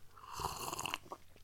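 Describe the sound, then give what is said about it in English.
A single loud, airy slurp lasting about half a second, someone noisily sipping a drink, followed by a couple of faint mouth clicks and no talking. “I know that I was rude to slurp, but I just wanted to illustrate how I was sipping right there.”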